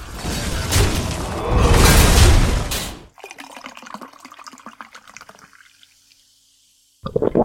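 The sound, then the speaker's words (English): A drink is poured: a loud rush of fizzing liquid, then a steadier pour into a glass whose pitch rises as it fills, a short silence, and a voice beginning at the end. “That's awesome, and we're gonna jump in that, but first, let's pour a drink and just catch up with everyone.”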